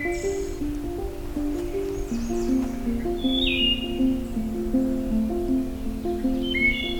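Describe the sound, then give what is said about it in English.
Song of heavily speckled thrushes in woodland: flowing, fluting whistled phrases repeat steadily, with thin, high calls from other birds scattered above and a soft background hiss of the forest. “These are the thrushes that have a lot of speckling on them.”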